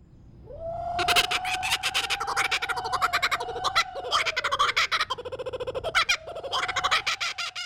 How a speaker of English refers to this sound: Also, you know how all jungles in movies sound the same? You hear a kookaburra here, even though kookaburras live in New Guinea and Australia.